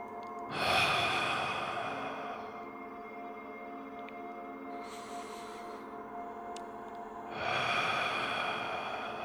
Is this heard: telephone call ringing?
no